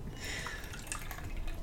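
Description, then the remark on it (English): Tea, a blend of anise hyssop, calendula and mamaki, pours steadily into a cup, a continuous bright splashing trickle with a few higher droplet-like plinks, moderately loud and steady for under two seconds with no talking. “Would you like some tea? I would love some tea, please.”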